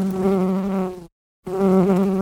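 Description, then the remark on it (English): Bees buzz loudly in a steady, droning hum, broken by a short moment of silence before the buzzing resumes. No one speaks. “Bees work on farms.”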